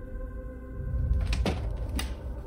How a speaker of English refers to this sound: I pushed the door open.